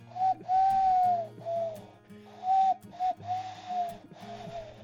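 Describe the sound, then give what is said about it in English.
A person does an owl impression with a series of breathy, tonal hoots, some drawn out and some short, repeating steadily for several seconds, clear with no talking. “That's my owl impression.”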